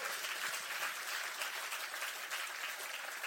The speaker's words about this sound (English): Come on, if you're going to clap, give him a good hand clap.